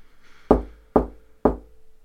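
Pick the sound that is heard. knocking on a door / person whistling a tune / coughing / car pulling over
knocking on a door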